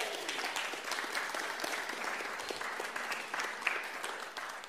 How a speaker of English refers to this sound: Round of applause.